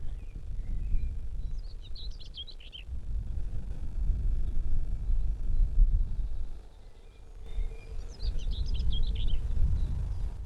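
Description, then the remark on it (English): Two short, scratchy warbling song phrases of a common whitethroat, a type of warbler, a few seconds apart, over steady low rumbling wind noise as it grows quite windy. “It's getting quite windy now, but I've just heard a common white throat.”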